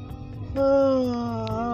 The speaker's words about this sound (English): Oh, sorry, I'm yawning.